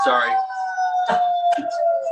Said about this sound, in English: Probably hear the fire truck going by.